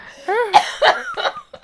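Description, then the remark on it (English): A woman coughs in three harsh, rasping bursts, spaced a few tenths of a second apart, with a strained voiced sound leading into the first. “Oh, God, she's coughing.”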